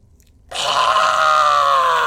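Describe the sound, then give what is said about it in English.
A voice imitates a creature with a loud, raspy, gurgling screech that starts abruptly after a brief silence and holds steadily for well over a second. “The creature just looks up at you and gives this gurgling screech.”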